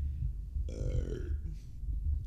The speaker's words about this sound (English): excuse me while I burp.